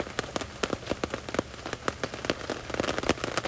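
Steady rain patters on and runs off a taut tent, with irregular drops tapping sharply over a continuous wet hiss and no voices.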